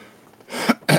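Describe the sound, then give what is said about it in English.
A sneeze bursts out loud, with a breathy build-up and then a second sharp, explosive sneeze right after. “Bless you.”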